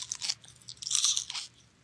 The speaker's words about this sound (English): That sound like some loud, stale-ass popcorn. Nope. It's fresh popcorn from Publix. 3 days ago.